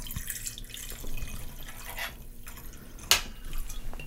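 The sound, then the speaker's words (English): Thomas II aged rum from Newport, Rhode Island, trickles steadily into a small 1-ounce measure, a soft continuous pour with faint splashing, broken near the end by a single sharp glassy clink. “So we're going to use 1 ounce of Thomas II. I'm going to pour it.”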